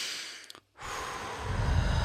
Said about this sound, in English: Okay, so we breathe, like you said, in the nose, out the mouth.